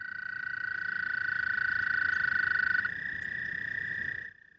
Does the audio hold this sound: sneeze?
no